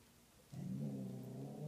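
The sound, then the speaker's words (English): After a brief quiet moment, a cat named Dilly lets out a low, steady growl that rumbles on without a break until the end, with no talking over it. “And Dilly's deciding to growl.”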